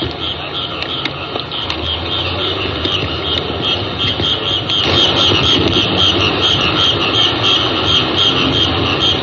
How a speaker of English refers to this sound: The sound of a tropical sound. Night sounds in Bangkok, Siam. Oh, doesn't that sound like the tropics? That's right in the middle of the city. You can hear an occasional car off in the distance.